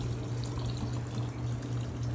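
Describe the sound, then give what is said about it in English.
Water trickles and splashes steadily down the side of a tower garden, a vertical planter growing lettuce and beets that drops water every hour. A continuous flow with a low pump-like hum underneath and no voices. “And what happens is the tower garden just drops water down on the other side every hour.”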